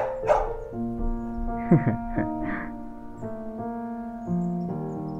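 Several short dog barks and yips come in quick succession near the middle, over a steady, sustained musical backdrop, moderately loud.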